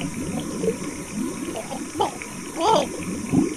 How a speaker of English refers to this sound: The plane is sinking so fast, I'm never going to make it. The water's rising.